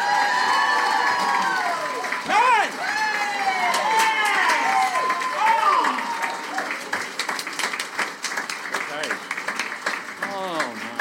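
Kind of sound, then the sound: crowd, audience applauding and cheering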